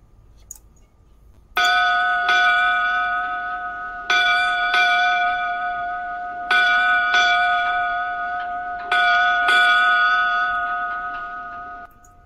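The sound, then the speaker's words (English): A ship's bell rings eight times in four evenly spaced pairs, each clear metallic strike ringing on and overlapping the next, giving eight bells. It is loud and alone, with no talking. “So, ladies and gentlemen, if that's all, it's up to Davey to give us our eight bells.”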